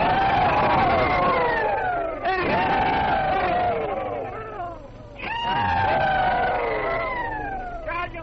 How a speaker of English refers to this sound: The pleasure of announcing to you that we're going to make an effort to repeat the old rebel yell. 1, 2, 3.